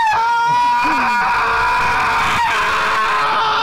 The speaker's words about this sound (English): Don't go high, just scream, okay? Really loud. Put it close to you. Here we go. Go as loud as you can.